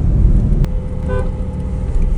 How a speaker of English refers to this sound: Just tried to cut into a little bit of a tiny traffic jam, got tooted by a taxi. You're not stopping me. I just drove ahead and went in the car in front of him.